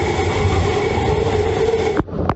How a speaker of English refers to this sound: You have to watch out for things that are flying by, and you can hear the wind. It's a weird sound. It was almost like a low roar. This is what it was like at the height of the storm when a resident opened a window just a few inches.